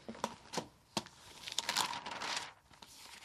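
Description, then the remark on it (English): The pages of a just-bought local newspaper rustle and crinkle as it is opened to look through the job ads, with a few sharp crackles followed by a longer stretch of steady paper handling. No one speaks. “Just bought the local paper and I'm going to have a look through it and see what jobs are in it this week.”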